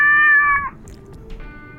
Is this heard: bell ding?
no